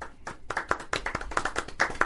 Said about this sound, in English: Yeah. I don't know why also, I'm clapping. That's a terrible story.